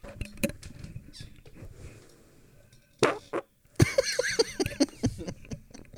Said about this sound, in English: That was a funny fart. It was a funny fart.